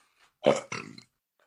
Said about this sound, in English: Anyway, that was like the weirdest burp I've ever had.